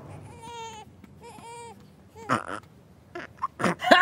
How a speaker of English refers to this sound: Ha! Burping like a boss? Yeah, way to go, fake dad.